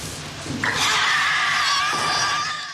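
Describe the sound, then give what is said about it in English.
A man in a movie lets out a loud, sustained scream lasting about two seconds, shrill and strained, with a brief rougher burst just before it and no talking over it. “I was going to say, we get his scream, but then we get Veronica Cartwright's response to it.”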